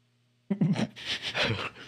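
A single drawn-out yawn that starts after a brief hush with a low voiced groan and trails off into a long, breathy exhale, moderately loud and with no talking.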